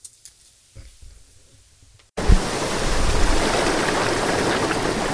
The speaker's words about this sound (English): Good afternoon. It's October 16th, and we're on the Rapidan River in the Shenandoah National Park. It's the first cold and rainy day of fall, so I decided to come out here for the night and go camping.